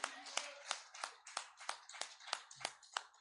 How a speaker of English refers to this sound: Well, God is good. And all the time, let's give him one more hand clap.